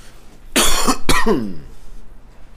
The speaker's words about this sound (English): we're coughing in mics.